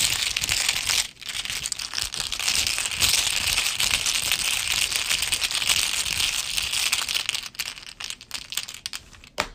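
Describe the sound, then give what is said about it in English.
Playing cards are shuffled back into the deck for several seconds, a dense crisp papery riffling and flutter that pauses briefly twice before continuing. No one speaks. “Shuffle that back.”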